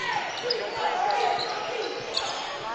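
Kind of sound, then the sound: impact, basketball dribbling on court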